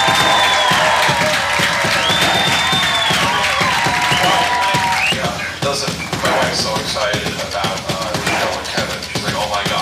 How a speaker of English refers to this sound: Clap for him.